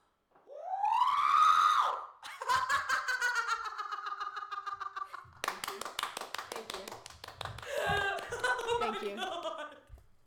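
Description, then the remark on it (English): A voice imitates the scream of the Star Wars droid R2-D2: a loud rising electronic-sounding wail, then several seconds of warbling, chattering beeps and rapid stuttering pulses. “Also, the R2-D2 scream I can do as well.”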